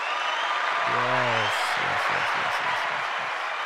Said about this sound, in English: So we are getting into our guest. We are not going to boo. We are going to clap for, aren't we?